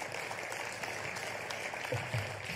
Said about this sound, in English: How about we give these families another round of applause?